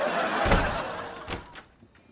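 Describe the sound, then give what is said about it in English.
A door slams shut with a heavy, booming thud, then a second lighter bang and a brief rattle as it settles. “You need to get your door fixed.”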